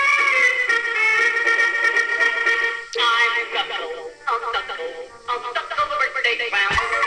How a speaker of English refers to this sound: And here is his theme song.